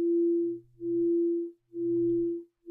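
A gong rings out as a low, steady humming tone that swells and fades in about three long pulses with short gaps between them, with no voices.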